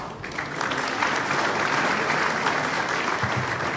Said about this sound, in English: Before I sign off, could I have a round of recorded applause for the efforts of editorial and production team?